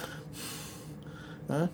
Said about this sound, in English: I'm going out sleeping over here, fucking getting ready to blow the fucking microphone, swallow it whole with a big yawn.